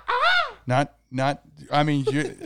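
A crow caws four times in quick succession, harsh and loud, with short uneven pauses between the calls and nothing else in the background.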